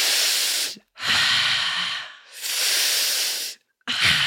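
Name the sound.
voice imitating heavy breathing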